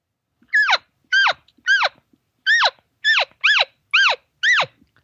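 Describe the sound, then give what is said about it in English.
Eight high, nasal chirps from a nervous elk calf, each a quick squealing note that drops sharply in pitch, repeated in an uneven, urgent rhythm with short silent gaps and no talking. “So you notice the difference, immaturity? That's what a calf will do.”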